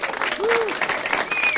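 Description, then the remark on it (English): Applause from a clap-button sound effect: dense, steady crowd clapping across the whole moment, with a brief rising-and-falling whistle tone early on and a thin high tone near the end. “And you literally have a clap button.”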